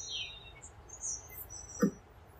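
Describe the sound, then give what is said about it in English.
Faint, high bird chirps drift in against a quiet outdoor background, a few brief thin calls spread apart, with one short low knock near the end. “So, oh, look at that beautiful bird.”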